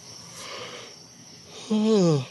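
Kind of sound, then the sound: human body sound, yawn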